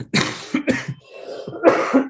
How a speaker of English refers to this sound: Sorry, I was trying really hard to not cough, but it got to me.